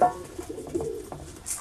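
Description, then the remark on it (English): A pigeon lame in one leg coos softly, a low, throaty burbling call with a slight pulsing warble, heard on its own with no voices. “You silly little pigeon.”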